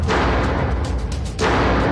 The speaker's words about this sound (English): The window slamming was just so strong and so loud. That was the same as the last time. And remember, this is an abandoned house this time, so it actually could be a shutter just hitting the wall.